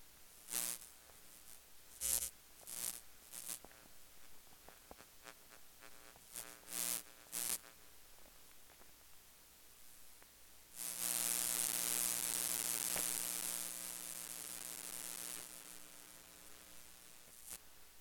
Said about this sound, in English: So you can tell that there is a lot of electromagnetic interference being picked up by the cable, which tells us that the shielding on the Amazon Basics isn't that great.